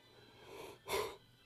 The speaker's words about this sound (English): Just had to do a quick yawn.